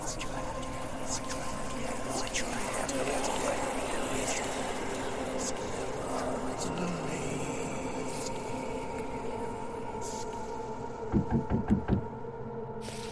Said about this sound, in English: The sound of knocking drew me out of my thoughts. I was sitting at the breakfast table, drinking a cup of coffee while watching a cardinal flit around the backyard, when I heard it.